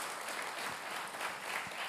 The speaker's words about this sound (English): I always like to just take a moment and honor them for all they do for their vision. So give them a hand clap and just thank our senior pastors.